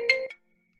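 A brief electronic phone ringtone: a bright, steady tonal chime with a higher sparkling note, about a third of a second long with a short second blip, then silence.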